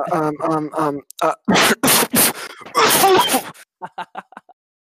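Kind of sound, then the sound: human body sound, cough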